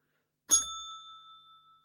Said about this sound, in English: Well, that's fantastic, man. Where's that positivity bell?